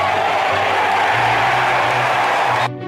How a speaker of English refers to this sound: Jaden Schwartz brought the Stanley Cup to Regina, Saskatchewan for a Rough Riders game, and the crowd went wild.